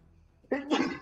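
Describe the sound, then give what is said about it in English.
A single sneeze bursts out abruptly after a quiet moment, a sharp, breathy two-part blast that sounds slightly turned away from the microphone. “Bless you. Sorry.”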